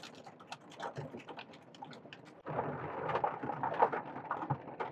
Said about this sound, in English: The rain's really coming down now.